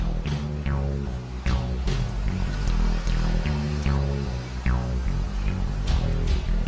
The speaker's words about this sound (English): The phone sex bird. This is some people that left the bird in their room, in their bedroom. Yeah. And listen, this is actually a bird doing this, I guess a parrot. Or is that parakeet? It's a parrot.